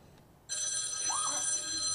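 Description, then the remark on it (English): A telephone bell suddenly starts ringing loudly and continuously about halfway through, a bright metallic jangle that fills the rest of the moment, with no voices. “That's the loudest phone I've ever heard.”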